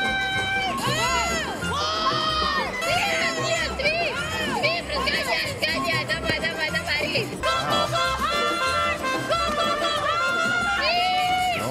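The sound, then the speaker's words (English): Several women curling players shout and scream in loud, overlapping bursts during a women's curling game, urgent sweep commands rising and falling in pitch against a busy crowd and arena background. “In women's curling, it's all about the screaming, isn't it?”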